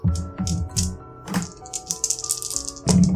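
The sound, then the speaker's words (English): Four dice rattle and clack together, rolled for a speed roll in a game: a burst of sharp clicks at the start, then scattered skittering taps as they tumble and settle, ending with a low thud. No voices. “You must attempt a speed roll. I need 4 dice, please.”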